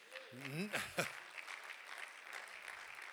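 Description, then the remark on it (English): An audience breaks into steady, moderate applause, a dense patter of many hands clapping that carries on evenly after a brief vocal exclamation at the start. “You can clap on that.”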